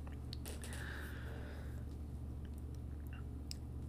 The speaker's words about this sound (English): Sorry, I'm taking a drink. It's just water. It's not a cold brew.